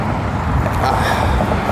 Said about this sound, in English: Oh God, there's a truck drive there. I'm trying to move these trucks through here.